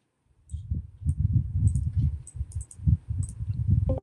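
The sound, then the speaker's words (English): Rapid, frantic mashing of keyboard keys, a dense run of thumping presses with sharper clicks scattered on top, fairly loud, with no one talking. “He spammed the keyboard?”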